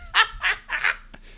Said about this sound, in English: David brought a geese in the room.